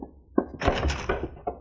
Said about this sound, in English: Sound come from behind the door, Cisco. Stand aside. I open the door. Take no chances.